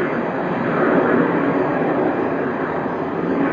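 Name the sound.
jet aircraft flying overhead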